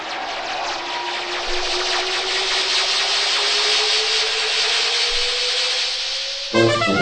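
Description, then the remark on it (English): In the radio play Our Man on Omega, a scooter that a woman has just got into runs with a steady buzzing whine, its pitch climbing gradually as it speeds away, wrapped in a broad hiss; no one speaks, and it cuts off abruptly near the end. “Mrs. Bummer has been getting into the scooter, even as we spoke.”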